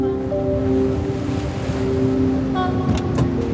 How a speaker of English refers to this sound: Hurry up! These waves are epic! You think? They don't look that big to me.